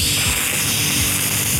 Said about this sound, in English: Yes, no cats hissing in your ears. Or the tape hiss is another thing that we are glad is gone.